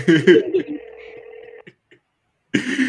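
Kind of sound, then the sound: signal or alarm, outgoing phone call ringing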